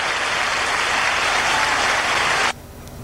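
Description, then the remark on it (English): A burst of canned applause played from a soundboard's applause button, loud and dense with clapping, lasts about two and a half seconds and then cuts off abruptly, leaving only faint background hiss. “when I introduce his award-winning All Things Radio News, then I can just hit that applause button”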